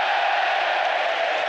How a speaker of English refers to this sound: That's the biggest cheer Arsenal have had all night.